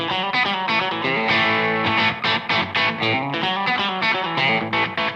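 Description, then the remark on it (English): An electric guitar with a slapback delay and amp reverb on plays a steady run of picked notes and chords, each echoed by a quick single repeat. It is loud, with no voices. “And then if I go to the second snapshot, I get slapback.”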